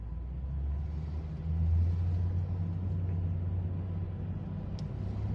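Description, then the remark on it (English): Steady low rumble of street traffic, with cars and a heavier vehicle passing by, the engine drone swelling briefly before settling into a continuous hum. No voices. “Just block traffic.”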